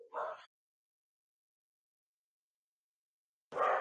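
Two sharp barks from dogs at a house as a plumber arrives, one at the start and another after a stretch of silence, fairly loud, with no talking in between.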